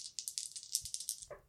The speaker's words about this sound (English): And I'm going to roll my challenge dice and see what happens.